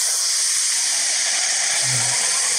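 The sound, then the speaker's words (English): A steady, loud rushing hiss of masking noise played by a smartphone, triggered by a noise-cancelling fork to cover slurping, fills the whole stretch, bright and even, with only a brief low murmur near the end poking through; any slurping is buried beneath it. “It directs your smartphone to play a masking sound.”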